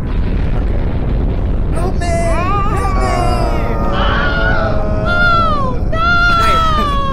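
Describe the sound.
A voice lets out a few high, wavering fake screams as a brief reaction to a nuclear bomb explosion sound effect, over a constant loud, rumbling roar, the pitch sliding up and down in several drawn-out bursts.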